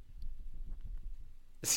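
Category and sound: animal, dog sniffing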